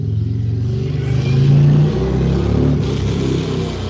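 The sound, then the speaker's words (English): Loud engines of heavy motorcycles rev and roar, rising in pitch around the middle and then easing off as they go by on a street. No one speaks over it. “What in the world is that? Sounds like a motorcycle gang. Well, somebody's went by the street with a what do you call, they call the, these things, these heavy motorcycles?”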